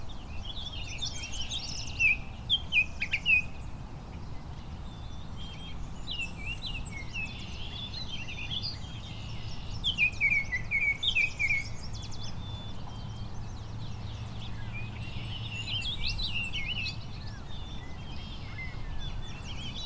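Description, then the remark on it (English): An intricate bird song of varied chirps, trills and quick whistled phrases, coming in bursts over a steady low background hum. Clear, with no one talking. “It's a much more complicated song, too.”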